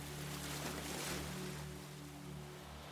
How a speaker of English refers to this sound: She realizes that the ocean drum is still being played.